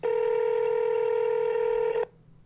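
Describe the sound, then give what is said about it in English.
A single steady electronic ringback tone from an outgoing phone call, lasting about two seconds before cutting off abruptly, heard clearly on its own with no talking. “Ladies and gentlemen, we're calling”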